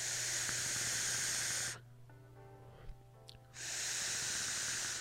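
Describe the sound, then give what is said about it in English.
Vape coil crackling during an inhale: two loud, steady bursts of hissing sizzle, separated by a quieter gap with a faint humming tone. “That crackle is delightful.”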